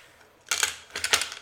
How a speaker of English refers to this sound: You failed to grapple. I threw out a 4. You were rolling 4 dice.